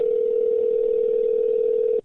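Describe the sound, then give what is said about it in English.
A steady telephone dial tone hums at one even, mid-low pitch for about two seconds as a call is placed from the show Sick and Wrong to a guest, loud and unbroken, then cuts off abruptly. No voices are heard. “calling you from Sick and Wrong.”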